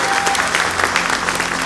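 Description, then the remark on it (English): An audience at LAS Studios claps and cheers to celebrate Voyager's 45th launch anniversary, a steady dense wash of many hands applauding with a few voices calling out, loud and sustained throughout. “Let's cheer to that.”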